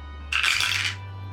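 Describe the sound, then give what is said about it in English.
A quick clattering rattle of two dice being rolled, tumbling for well under a second, a dense burst of bright clicks and knocks over a steady low hum, with no one speaking. “Okay, first I want you to roll 2 dice for Jinkies.”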